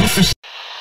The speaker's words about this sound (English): Hit the static.